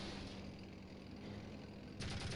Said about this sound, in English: As we come around, we see a red Blood Eagle base. Our gunner is auto-shooting for us. See some enemies on the left. Lots of foot soldiers. Make quick work of them.